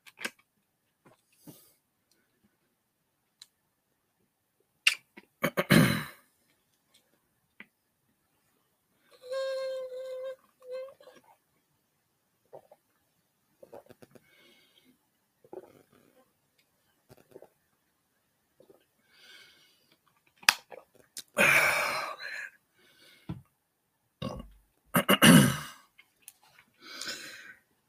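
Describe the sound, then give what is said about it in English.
Quiet sounds of someone sipping water from a glass, with soft slurps, swallows and breathy exhales spread across the stretch, a few louder bursts near the start and end. “Give me 1 second as I take a sip of this water.”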